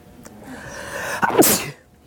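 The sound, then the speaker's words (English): A single loud sneeze: a short intake followed by a sharp, hissing burst that quickly fades, with no talking around it. “I've never seen you sneeze.”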